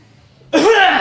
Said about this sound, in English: Nah, how you almost coughing on the mic, though? I'm trying to avoid it.